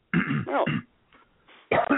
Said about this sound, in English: God dang it. Excuse me. Why do you cough all the time?